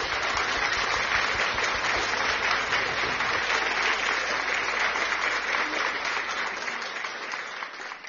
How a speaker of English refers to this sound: Give a clap of joy to the Lord. Give a clap of joy. Thank you, Jesus.